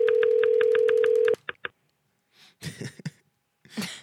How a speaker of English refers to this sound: Every time I press a button, it just makes a clicking noise.